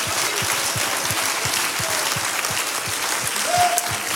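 A large church audience at the Life Church of Kansas City, Missouri, applauds steadily, clapping their hands unto Jesus, with a dense wash of clapping and a regular rhythmic thump running underneath, sustained and fairly loud throughout.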